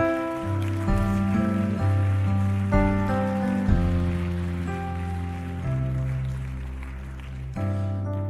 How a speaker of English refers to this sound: Look, y'all give Him a hand clap too, man. Give Him a hand clap.